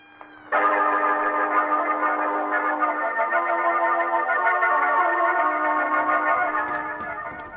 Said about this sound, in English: You hear those sirens? That's the police on the way to make sure you keep that date at the death house.